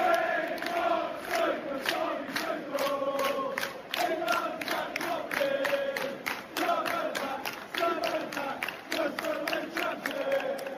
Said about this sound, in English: But a lot of things on the night felt like we were still in the end of the old one, and felt like an ending generally, you know, from the Queen Elizabeth tributes to the 21st minute fan orchestrated applause and chanting for Tuchel.